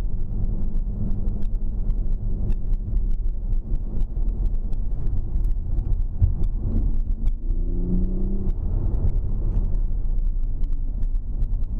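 A car drives along the road with a steady low engine rumble and road noise, then the engine note climbs as the driver puts a foot down and accelerates partway through, leaving a Mustang behind, heard from inside the vehicle.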